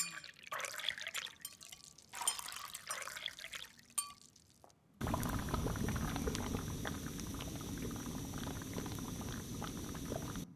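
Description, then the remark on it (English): In a 3D animation, liquid splashes and trickles for a few seconds as water is poured from a flask into a beaker, then a sudden switch to a steady, dense bubbling roar of the water boiling, continuous and fairly loud with no voices. “I would like to show you a 3D animation of water being poured from a flask into a beaker and water being boiled.”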